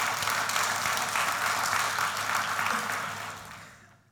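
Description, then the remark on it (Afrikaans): A crowd applauds everyone who was involved, with dense, steady hand clapping that holds strong for about three seconds, then fades away toward the end. “Ons klap het vir hulle hande.”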